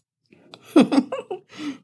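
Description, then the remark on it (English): Wet mouth sounds of someone chewing a bite of Gouda cheese, a short run of soft smacking bursts with a brief pause before a final chew, with no talking. “So I just took a bite of the Gouda. A lot of little chewing sounds.”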